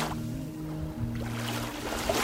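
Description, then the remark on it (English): Lake Michigan waves wash and churn in a steady, fairly loud rush, with a low droning hum underneath like a boat motor; no one speaks. “The waves of Lake Michigan.”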